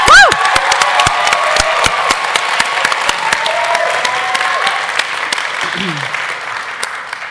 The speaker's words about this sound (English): we're going to have a huge, wild, celebratory round of applause for all of us here